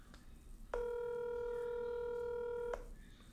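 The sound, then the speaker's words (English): A single steady electronic ringback tone from an outgoing phone call sounds for about two seconds, clear and even, then cuts off, with quiet background noise and no talking. “He don't want to answer the phone.”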